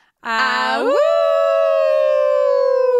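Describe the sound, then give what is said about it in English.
A human voice imitates a wolf howl: a single loud, sustained 'awoo' that starts low, swoops sharply upward in pitch, then holds a long steady tone that slowly sags and trails off. “I know we never talk after the awoo.”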